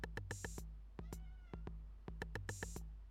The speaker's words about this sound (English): Does this sound like you? Then you're a fucking cat.